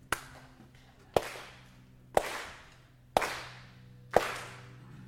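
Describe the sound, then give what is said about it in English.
A speaker demonstrates clapping for listeners invited to stand and clap along: five sharp hand claps land in a slow, steady rhythm about one second apart, each crack fading out in a brief ringing tail. No voices are heard. “I'm going to clap. You can clap too, like this.”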